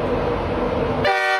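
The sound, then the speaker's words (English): A train horn at King's Cross Station sounds one loud, steady, harmonic toot that cuts in sharply after about a second of low rumbling engine noise, holding its tone to the end. “He likes trains. It's Train Guy.”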